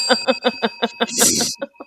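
A small bell dings rapidly about eight times in quick succession, fairly loud, with a brief burst of rattling noise near the end before two final rings.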